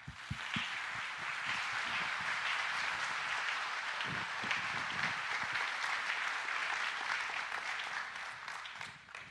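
A crowd applauds steadily for about nine seconds to welcome a guest coming out to share his story, a dense, even wash of many hands clapping at a constant, fairly loud level, with no voices over it.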